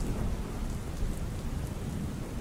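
Steady, heavy rain hisses without a break while deep thunder rolls and rumbles low underneath, a continuous thunderstorm with no voices.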